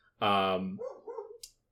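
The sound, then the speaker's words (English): A single loud, drawn-out bark from a dog waiting to be let in, followed by a faint murmur of voices and a brief hiss as it fades. “Just 1 second, sorry, I have to go let my dog in.”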